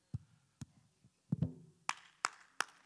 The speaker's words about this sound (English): Clap your hands. Sometimes while they're singing over there, I clap my hands.